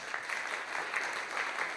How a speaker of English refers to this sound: You can clap for that.